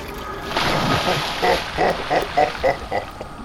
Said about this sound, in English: Another fine day, swimming in my sacred water. I drink to my belly's full. I bathe to my heart's content. I am a happy Cyclops.